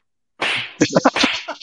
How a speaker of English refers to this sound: Slap the shit out of you.